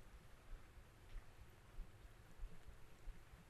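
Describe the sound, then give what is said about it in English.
Heavy rain from a downpour following a line of storms pours down steadily in a dense, continuous hiss, with scattered louder drops spattering on a surface and no voices. “This is the actual heavy downpour following a line of storms”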